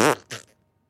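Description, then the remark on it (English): A voice imitates a fart with a short, buzzy, sputtering mouth noise, loud, followed by a second briefer burst before trailing off into quiet. “Should we make fart noises?”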